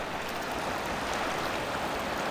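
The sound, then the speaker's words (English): The Pecos River in the Sangre de Cristo Mountains of northern New Mexico rushes and burbles steadily, a dense, continuous wash of flowing water with no pauses, moderately loud, with no voices present. “Biohabitats would like you to enjoy a virtual moment along the Pecos River in northern New Mexico's Sangre de Cristo Mountains.”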